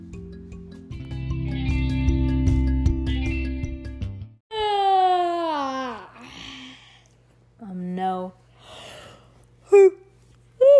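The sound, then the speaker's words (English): Drawn-out vocal yawns from two people, with a breathy, sliding pitch, follow a few seconds of steady low rumbling, then shorter yawning sighs and breaths. “We're both yawning.”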